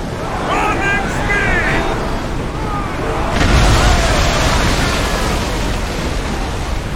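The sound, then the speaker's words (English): Video game audio: a loud, crashing impact of a ship being rammed and cleaved, its wood and sails splintering, with rushing water and grinding destruction continuing afterward, plus shouting voices early on amid the roar of the sea. “all the impacts on the different materials, the wood, the water, the sails, all the destruction, the grinding on the boat.”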